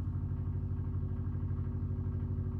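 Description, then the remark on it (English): A souped-up car, started and left running outside in Elkhart, Indiana, idles steadily with a deep, throbbing low rumble and fast rhythmic pulsing, with no one talking. “That is a car starting.”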